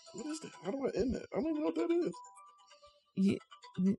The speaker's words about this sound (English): His phone's ringing. Oh. He cut his phone off.